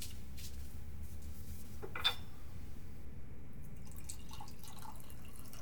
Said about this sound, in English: You don't mind if I pour myself a drink? No, go ahead.